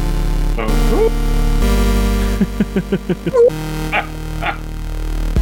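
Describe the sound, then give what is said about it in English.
A voice imitates a wolf howl: a rising yelping cry, a quick run of short barking yips, then two more upward-gliding howls, all loud over a steady low hum. “make a wolf sound.”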